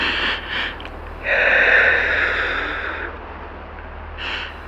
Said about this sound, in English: I can hear you breathing, can't you? In out. In. Out.